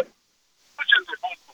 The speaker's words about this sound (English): I sound awful on this headphone. I'm sorry. Yeah. The phone is really breaking up. It's not a good quality sound there.